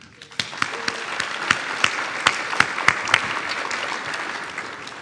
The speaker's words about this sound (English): I want you to meet one of our heroes that you guys already know, so you guys have to give him a loud, thunderous applause.